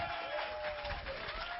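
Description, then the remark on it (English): A church audience applauds in praise, a dense, steady wash of many hands clapping together, sounding somewhat muffled, with no clear voices over it. “Give them one more big hand clap of praise for God's glory.”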